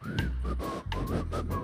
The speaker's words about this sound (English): I got some good apostolic whistlers in the house. One more time. All you whistlers, sing or whistle. That's good.